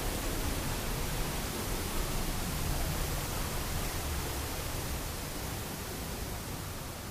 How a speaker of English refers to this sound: So, on with the show, just as soon as we get away from this very noisy waterfall.